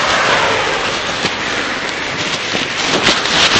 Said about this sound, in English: A rainy morning, if that is. A rainy morning. It's just started raining. We've walked down here and the rain just started.